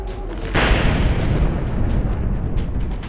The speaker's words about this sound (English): and we just hear a loud crack of lightning happen right above where the stable is.